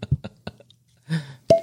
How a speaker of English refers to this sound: There we go. Nice. All that to get that cork pop. It was worth the wait.